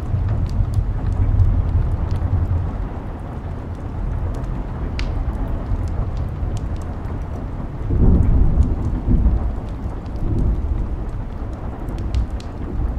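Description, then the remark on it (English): Low, rumbling thunder rolls continuously beneath steady rainfall, swelling louder around the middle before easing off, with scattered sharp drips and patters on top. “Is the thunder still rolling around you?”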